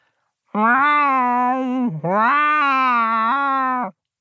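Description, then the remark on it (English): A person imitates a cat, drawing out two long, loud meows one after the other, each held for over a second with a brief dip between them, spelling out the word cat in cat. “I speak the language of cats, and I can spell any word in cat.”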